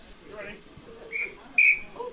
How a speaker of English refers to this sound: Multiple whistles being blown.